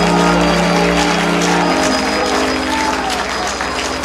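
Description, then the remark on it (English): A large crowd claps steadily and loudly, the dense applause filling the room, with a sustained musical tone and low organ-like chords shifting underneath. “Come on, why don't you clap your hands if you believe that Jesus is about to put some things back together.”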